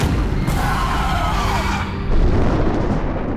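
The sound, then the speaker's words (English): A loud, booming crash of thunder rolls on for several seconds, deep and rumbling with a dense low-end roar, heavy, with no voices. “Before he could go on, the booming crash of thunder filled the air.”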